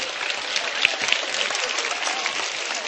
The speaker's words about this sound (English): Okay, give yourselves all a clap. 为你自己拍掌。